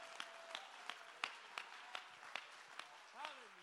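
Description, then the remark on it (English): An audience claps hands in praise in a steady, even rhythm, about ten sharp claps in quick succession, with a voice calling out briefly at the end. “Oh, somebody clap your hands and give him the praise.”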